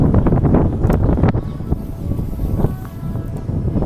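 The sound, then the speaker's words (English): Loud, blustery wind buffets a microphone, producing a continuous low rumble with gusty bursts and crackles that swell and dip throughout, with no voices heard. “Hope it's not too windy in the microphone. It's pretty windy from my perspective.”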